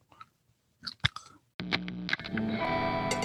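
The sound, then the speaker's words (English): A few sharp, wet gum-chewing clicks sound alone, then a delay effect abruptly swells into a dense, ringing wash of repeating echoes that holds steady and loud until the end. “I've never heard gum chewed with delay.”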